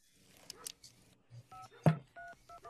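Several short touch-tone beeps as a woman dials the police on a phone, evenly spaced, with a sharp click partway through and faint murmuring before the tones begin.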